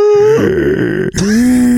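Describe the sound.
A voice imitates a gasping snore: a loud, steady hum breaks into a low, rattling rasp, pauses for a split second, then resumes as a long, rising tone. No other talk.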